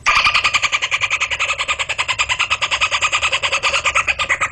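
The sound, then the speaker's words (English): An 8-year-old child's voice, played from a YouTube clip, imitates a dolphin with a rapid, steady stream of shrill, squeaky chattering pulses, about eight per second, loud and continuous for several seconds with no speech. “That's an 8-year-old kid doing that.”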